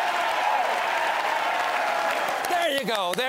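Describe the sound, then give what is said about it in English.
An audience applauds in a steady, dense wash of clapping for a few seconds during Joe Biden's speech about his relief plan, the American Rescue Plan, and then a person starts speaking as the applause continues underneath. “Are we not clapping?”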